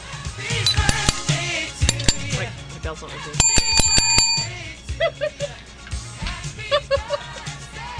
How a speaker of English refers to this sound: Okay, I'm entertaining myself with the bell. Yeah, put the bell down.